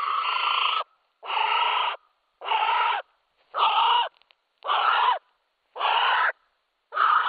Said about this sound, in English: If you know anything about birds, you might have picked that that was a female North Island brown kiwi.